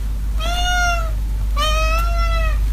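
A house cat meows twice, each call drawn-out and clear, with a short pause between them. No one speaks, and a low steady hum sits underneath.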